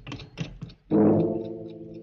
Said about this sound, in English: as the clock finishes striking 12.